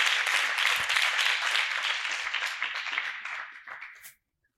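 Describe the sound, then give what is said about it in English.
A crowd claps hands in dense, steady applause that stays loud for about four seconds, then thins and stops abruptly, leaving silence. “Clap hands for her on my own.”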